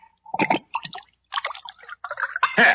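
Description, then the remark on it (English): Wine is poured into a glass, splashing and gurgling in several short bursts with brief pauses, the last pour fuller and louder. “But before I do, pour me another glass of wine.”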